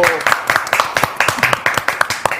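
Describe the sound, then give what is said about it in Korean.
Hands clap in a quick, steady rhythm, about ten sharp claps, with faint voices murmuring underneath, as a small audience welcomes a guest on a live broadcast show. “자 박수 맞아주시기 바랍니다.”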